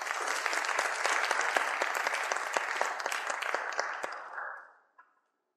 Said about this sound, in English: Please give everyone a round of applause there for speaking.